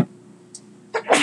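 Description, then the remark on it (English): A single sharp sneeze bursts out near the end after a quiet pause, with a faint breathy catch just before it and no talking. “Bless you.”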